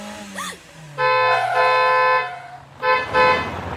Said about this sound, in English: Everyone to the side. There's a car. A car that's swerving all over the road? Run!